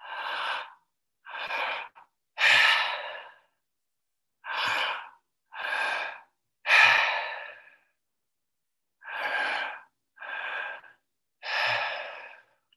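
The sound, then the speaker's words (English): Loud deep breaths during a breathwork exercise come in three quick groups of three, each a sharp, airy rush of about a second, separated by short silences, with no talking. “And breathe into that part of the body that you need to.”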